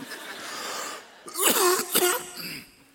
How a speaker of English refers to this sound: Lord, it sounds like a simple cough, but I know the devil doesn't want this message going out.